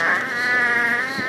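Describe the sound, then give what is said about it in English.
A fart sound effect: one steady, buzzy, raspy blast with a rich harmonic tone, holding at a fairly even loudness for just over a second, with no voices. “She paused so long, I had to put a fart in there.”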